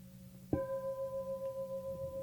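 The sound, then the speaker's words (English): A meditation bell is struck once and rings on with a clear, sustained mid-pitched tone and bright overtones, its sound gently pulsing and wavering as it slowly fades. “So before I ring the bell, before you let go of anybody's hand, or simultaneously with the bell, wish them well.”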